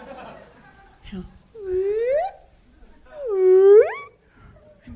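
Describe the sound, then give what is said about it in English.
A voice imitates a slide whistle with two loud, rising pitch sweeps, the second longer and higher than the first, separated by a brief pause and framed by faint background murmur. “Is anyone else disappointed that the porn industry doesn't use the slide whistle sound effect as much?”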